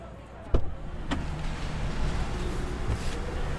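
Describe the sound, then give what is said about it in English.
A rental car door shuts with a heavy thump, followed by a second sharp click, then a steady low rumble fills the car's interior. No one speaks. “So, a big part of covering any American election cycle is the rental car.”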